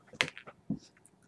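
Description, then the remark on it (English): A die rolled for damage in a tabletop role-playing game clatters across a hard tabletop: a sharp click, a few quick rattling taps, a duller thud, then faint ticks as it settles. Fairly quiet, with no voices. “Here, just roll this die.”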